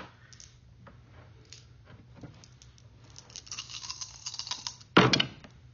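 Six dice rattle in a cupped hand, growing busier, then spill onto a hard surface in one sharp clattering burst. A low steady hum runs underneath, with no talking.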